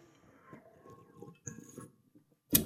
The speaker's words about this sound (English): All right. I'm going to take a sip of this beer.